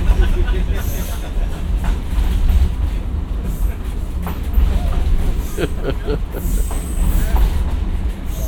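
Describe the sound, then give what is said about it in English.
A rail car rumbles steadily along the track, rocking from both the track and the way the car is made, with a deep continuous roar and occasional clacking knocks and rattles as it sways, a few muffled voices faintly underneath. “Does it rock so much from the track or just the way the car is made?”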